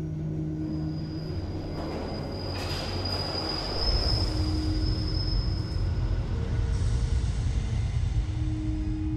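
A London Underground tube train rumbles along with a thin, steady metallic wheel squeal overhead; the low rumble swells louder partway through and stays heavy, with no voices.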